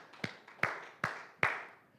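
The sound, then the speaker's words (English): A group clapping in unison to God in thanks: four sharp, evenly spaced claps in a steady beat, each trailing off with a lingering decay before the next one lands. No voices are heard. “Let's clap our hands to God again and thank Him this morning.”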